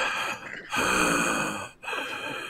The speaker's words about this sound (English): Stop breathing like that.